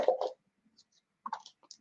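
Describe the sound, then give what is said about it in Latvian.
Packaging being torn open: a sharp rustling rip at the start, a brief pause with faint crinkles, then another cluster of crackly tearing and handling noises. “Varam arī atraut vaļā vienu no šiem.”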